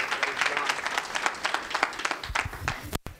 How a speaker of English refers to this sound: Give Jesus another hand clap. Hallelujah.